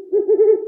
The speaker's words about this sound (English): Today's Name That Sound is an owl. You might think that owls hoot, and some owls do.